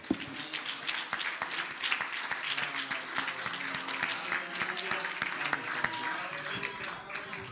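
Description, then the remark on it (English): The audience of Hatchbend Apostolic Church bursts into sustained applause and cheering for the Lord, dense clapping mixed with raised voices and shouts, holding steady and fairly loud for several seconds. “Could we give the Lord a big cheer?”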